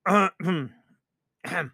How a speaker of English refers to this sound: You know, I always have to clear my throat before I read.